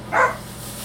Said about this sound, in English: I swear to God, that fucking dog.